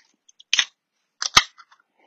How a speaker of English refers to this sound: Tonight we're going to be cracking open a beer called Constant Disappointment.